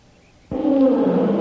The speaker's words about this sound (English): Say, did you hear that? Tiger. Yeah. Come on up here, Colo. There's a tiger down there.